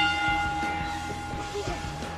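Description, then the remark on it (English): A bell rings with a steady, sustained tone that lingers for a couple of seconds, loud, over a low rumbling background. “Ring the bell.”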